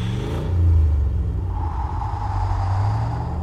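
car engine revving

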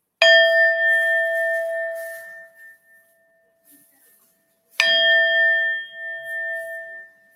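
tibetan singing bowl ringing

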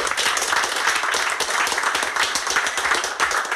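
audience round of applause

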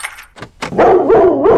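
dog barking

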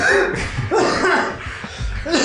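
cough

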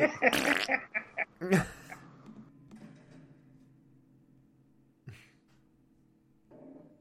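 fart

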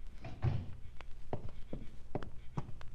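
door being shut

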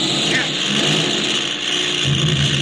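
airplane engine roaring

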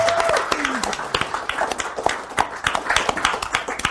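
audience applause

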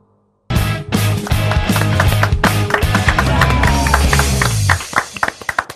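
applause

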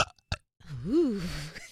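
burp

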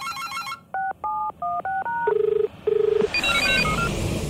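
telephone call ringing out

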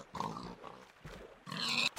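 pigs oinking

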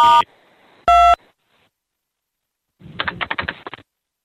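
telephone keypad tones

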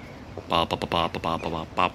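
crows cawing

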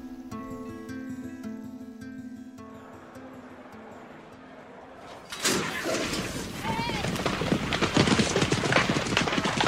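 horse galloping

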